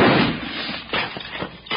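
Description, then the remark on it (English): A loud gunshot cracks and booms at the start, followed by a few sharper clattering impacts spaced about a quarter second apart, as a bullet strikes a steak on a dinner plate. “No, that dad-blamed bushwhacker shot my steak.”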